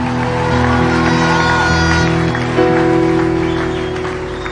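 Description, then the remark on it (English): An audience claps steadily in praise of God for a testimony, a dense, loud wash of applause, blended with sustained keyboard chords that hold and shift midway through, with no one speaking. “Come on, give God a mighty clap offering of praise if you can.”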